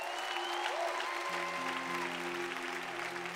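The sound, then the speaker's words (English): An audience claps steadily in a dense, continuous wash of applause, giving the Lord a hand clap offering during a sermon. Partway through, sustained low organ or keyboard chords come in beneath the clapping. “Come on, give the Lord a hand clap offering right there.”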